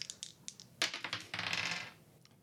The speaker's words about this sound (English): How many do I roll? You roll 3 dice, because you have 2 in rec, right? Or 1 in rec. Oh, so roll 2 dice, sorry. Roll with advantage.